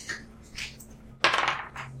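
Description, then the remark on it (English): Dice rolled for a history check clatter and tumble across a hard tabletop, a few light clicks followed by a sharp rattling burst around the middle that trails into quick bright taps; the roll comes to a 9. “Now let's roll a history check.”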